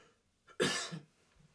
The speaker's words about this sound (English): Sorry, guys. It's really cold. I'm coughing right now.